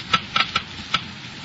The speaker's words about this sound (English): First, let's listen to the Geiger counter slowly click off the low wear rate of new RPM.